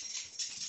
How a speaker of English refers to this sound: Sorry, that's my dog scratching.